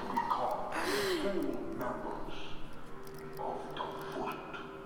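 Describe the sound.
A dog gives a few short barks mixed with high, wavering whimpers over roughly five seconds, against a busy background of murmuring voices and noise.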